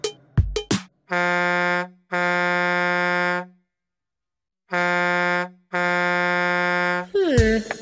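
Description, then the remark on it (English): A loud truck horn honks in four long blasts, paired in two bursts with a short pause between, after a few brief thumps at the start and a quick rising squeal at the end. “Oh, a truck.”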